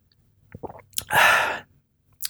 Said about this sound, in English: I probably could have made the swallowing a bit more theatrical there, but oh, well, there it is.